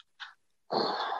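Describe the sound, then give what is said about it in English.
A short, sharp intake of breath, a brief pause, then a loud, harsh, explosive sneeze that sprays noise across the range and holds to the end. No talking. “Oh my God, who had that ugly sneeze?”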